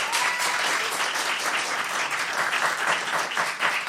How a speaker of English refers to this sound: So, audience, once again, it is up to you. Please vote for the candidate you believe should be elected ruler of Earth. Applaud now if you believe it should be Godzilla.